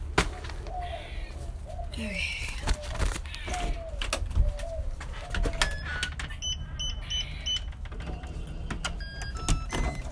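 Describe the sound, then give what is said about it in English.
A bird coos repeatedly, like a pigeon or dove, in short low calls over a steady background rumble, with a few higher chirps and clicks later on. “Is that a bird?”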